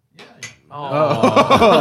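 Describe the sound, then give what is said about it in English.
Two quick, bright clinks of wine glasses touching in a toast, followed at once by several people talking and laughing loudly over each other. “You guys want to take really a sip, a little wine break? Everyone, take a little wine, a quick, right. Cheers.”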